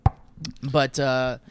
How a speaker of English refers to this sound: I forgot what I was knocking on wood about because it's 7:30 in the morning